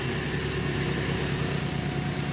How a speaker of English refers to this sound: In a canal near the levee, dozens of workers try to move oil toward the vacuum hose of a tanker truck. They have those little rollers over there that actually skim the oil on top, and it goes into those rollers, and those vacuum trucks pick it up out